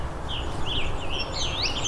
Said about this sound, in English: You also find blue wing warblers in these kinds of sections. They are not one that sing as often as indigo bunting, but can be found with enough patience. Here's one here.